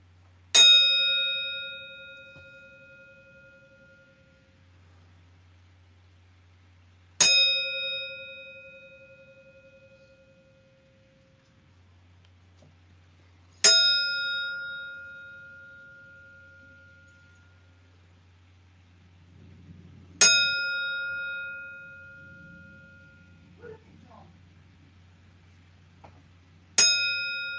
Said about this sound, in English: Bell in hand, and ready for the five rings. So with that, we are going to pay tribute with the five bell salute.